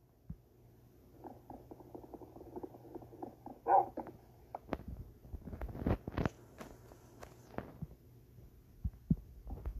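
A wolf whines and pants in a low, pulsing run, followed by scattered thumps and clicks against a soft steady hum; no one speaks.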